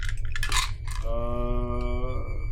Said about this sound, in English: Roll a d10. I was like, bro, I actually have that amount of dice on here, but like, alright, so the d10, what does the d10 look like? It's like a 12, but with 10. It's like a weird top.